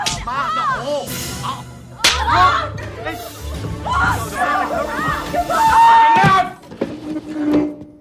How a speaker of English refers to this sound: And because Catfish and Black Bean Sauce is that type of movie, it ends with this like brawl between the two, this physical like girl fight between the two.